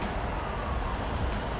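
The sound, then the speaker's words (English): A steady wash of road traffic at a bus stop, a low rumbling roar of passing cars with no pauses, heard alone without any talking. “I don't feel like taking this backpack off my back and digging for it while I'm at, this bus stop.”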